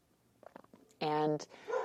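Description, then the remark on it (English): A dog named Pancho gives one loud bark, sustained and tonal, right after some soft murmured voice sounds, with quieter vocal noise trailing after it. “It's like invariable that I would record a podcast without him barking, but he's part of things too.”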